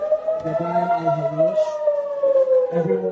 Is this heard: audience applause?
no